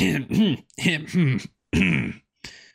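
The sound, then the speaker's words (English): A voice acts out a man coughing and sputtering as he sits up: a string of about six rough, voiced, gargly bursts with short gaps, ending in a brief final hack. “He sits up and he coughs and sputters.”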